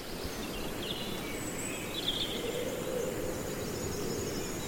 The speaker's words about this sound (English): That owl's got louder and more frequent as well. Yeah. Is he saying goodnight? Yeah, that crossover between the night shift and the day shift.